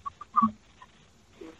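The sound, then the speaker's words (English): A chicken clucks in a few short, irregular bursts, one slightly louder than the rest, with quieter clucks trailing off. Fairly soft, with no talking. “We just wanted to get a chicken.”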